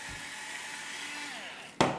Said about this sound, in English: Anybody else has a mechanical salt and pepper machine?